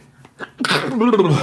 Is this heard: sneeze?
yes